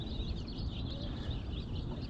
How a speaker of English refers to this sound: Yeah, birds chirping in the background. Sonically very soothing.